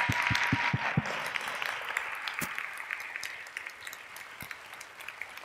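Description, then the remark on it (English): A crowd of teachers breaks into applause for themselves, many hands clapping at once in a dense, steady patter, with a few sharp individual claps standing out early on before it gradually thins. “So at this time, I need everybody in here to clap for themselves right now.”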